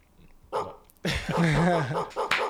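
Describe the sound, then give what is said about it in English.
A dog barks: one short, sharp bark, then a louder, drawn-out bark that wavers in pitch, ending with a couple of quick yelps. “Yeah, he started barking.”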